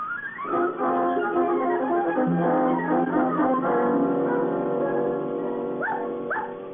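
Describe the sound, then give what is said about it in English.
A chorus of several dogs at a dog hotel barking, whining and whimpering over one another, a steady overlapping din that runs for several seconds, with a couple of sharp rising yelps near the end. “He's in a dog hotel on a honeymoon with my dog.”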